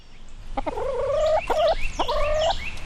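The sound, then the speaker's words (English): Chickens on a shelter's farm calling: three drawn-out, nasal clucking squawks, each starting with a sharp click, repeating in a steady rhythm over a continuous farmyard background with no talking. “As we walk past the chickens and Blackberry the rabbit”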